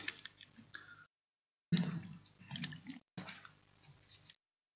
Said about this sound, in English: Well, let me just grab a swig of water.